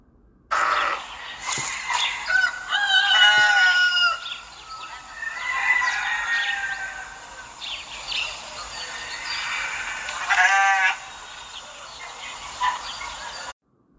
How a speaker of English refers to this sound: How about them barnyard noises, huh? I think barnyard symphony should replace the algorithm.